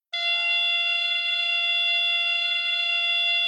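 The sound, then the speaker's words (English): A steady electronic buzz from a speaker inside a padded cylindrical base, about 4 feet tall, in beep baseball, activated by a base operator after the batter hits the ball. It sounds abruptly and holds at a constant loud level, a harsh tone rich in harmonics, continuing without pause or change and with no voices. “the bases are padded cylinders that stand about 4 feet tall, and these cylinders have speakers inside them. When the player hits the ball, a person called a base operator will activate one of these two bases.”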